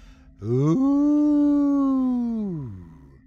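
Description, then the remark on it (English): A single long, wavering howl like wind, voiced by a person: it swoops up in pitch, holds a steady moaning tone for about two seconds, then slides down and fades. “His shoulders relaxed when he realized it was the wind. It sure is howling tonight.”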